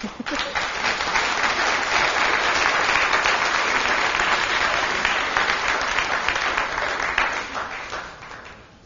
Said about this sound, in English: Okay, let's give our panelists another round of applause.